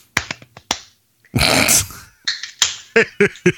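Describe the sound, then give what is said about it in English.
Sharp, crisp hand claps land in a loose, uneven rhythm, broken midway by a longer rough burst of noise, then a further run of loud claps to finish. “I say, folks, like, you gotta add the claps to that shit.”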